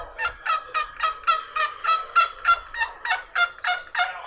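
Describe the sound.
A slate turkey call is worked with a thumb on it, producing about a dozen sharp, scratchy clucks in a steady, quick rhythm that imitates a turkey, with no talking over it.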